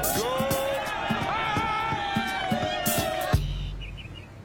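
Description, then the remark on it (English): A party crowd cheers and whoops over pounding music with a steady beat, then everything cuts off abruptly to near silence with a dull thud. “I love hard cuts from people cheering to complete silence.”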